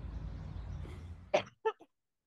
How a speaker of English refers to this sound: Oh my gosh. My cough has been exacerbated since being in the desert.